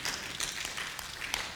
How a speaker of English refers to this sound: Come on, somebody. They were clapping. You know they were clapping.